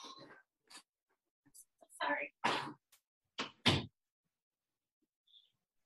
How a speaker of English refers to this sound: I'm just gonna shut the door. Hold on. One second.